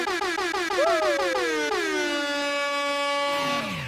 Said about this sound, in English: Right at the buzzer. Oh, 14, at the buzzer.